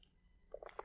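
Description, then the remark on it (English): A quick, quiet sip from a strawberry-flavored drink: a few short wet slurping bursts, following a moment of near silence, with no talking. “I'm going to take a sip of this.”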